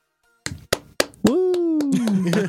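A brief round of applause: a handful of sharp, uneven claps, joined halfway by a long whooping voice that slides gradually downward in pitch while a few more claps ring out.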